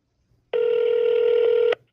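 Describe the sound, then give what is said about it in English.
A single electronic telephone ring tone sounds once, a steady buzzing pitch held for just over a second, clear with no voices around it, as a cell phone is called on the air. “Abe's favorite, calling people whose cell phone on the air”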